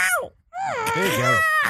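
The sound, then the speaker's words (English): A voice imitates an angry, screaming cat: a brief yowl, a pause, then a long, loud, wavering screech that bends up and down in pitch, with another cry starting at the end. “It is like if a woman was doing her best cat impression, if that cat was very mad.”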